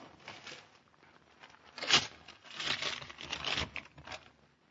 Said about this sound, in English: Yes? Telegram. Oh. Shove it under the door, will you? Right.